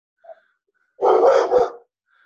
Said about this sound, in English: My dogs didn't even flinch. Harley's barking. Oh, someone's doing fireworks across the street. Ah, that'll do it.